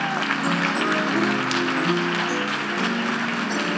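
An audience at CCCLI gives a pastor a warm round of applause, steady, sustained clapping for a few seconds, with faint voices and tonal sounds mixed underneath.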